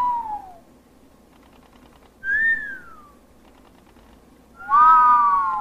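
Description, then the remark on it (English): Two geologists looking at satellite photographs trade three short whistles back and forth with pauses between them, each a clear tone sliding downward in pitch, the last one longest and loudest, with no talking. “One of them is impressed enough to whistle at what he sees, and soon they are both whistling at each other.”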